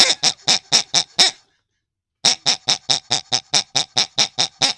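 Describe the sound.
A voice mimics pig oinks in a sung rhythm: six loud grunts, a one-second pause, then about eleven more in a steady beat, with no other talking.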